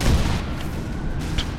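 Heavy video game cannon fire aimed at incoming ships: a few deep booming blasts over a continuous low rumble, loud, with no voices.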